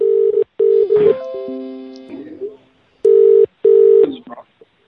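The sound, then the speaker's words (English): A phone line rings out with a loud ringback tone in two double-pulse bursts, separated by a brief stretch of sliding electronic tones and faint murmuring. “Your call can't be taken at the moment. So, please leave your message.”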